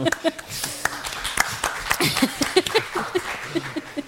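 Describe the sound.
A short burst of applause, a few pairs of hands clapping in a quick, uneven patter for several seconds, with voices and a bit of laughter mixed in underneath.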